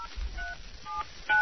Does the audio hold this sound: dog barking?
no